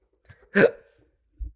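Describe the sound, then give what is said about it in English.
A single sharp hiccup bursts out abruptly with a gulping catch, followed by a brief quiet and a faint low thump near the end. “When I'm having anxiety hiccups, I need my Pepto-Bismol.”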